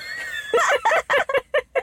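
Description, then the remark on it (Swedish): A person imitates a horse's whinny, a quick, fluttering run of about six voiced bursts that shorten and fade toward the end, with no other sounds around it. “För du vet ju redan i Skönheten och odjuret att när hästen försvinner från pappan och pappan letar, då är det värsta att vargarna kommer och han ropar Filip!”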